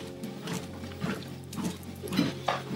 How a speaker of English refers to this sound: Just going to take some water here.